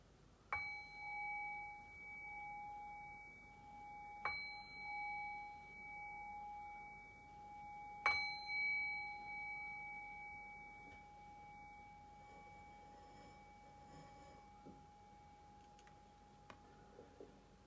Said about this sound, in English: And in a few breaths, I'll ring the sound of the bell, which will cue us back into a conversational space. And I'll ring the bell 3 times.